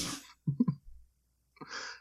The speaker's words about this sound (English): But I think that it my dog just sneezed. Bless you. Bless you, dog.